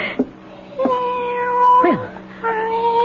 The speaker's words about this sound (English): Well, where are you? After all that racket, where are you? Cat? Gone off to howl at somebody else. Well, good. All that meowing.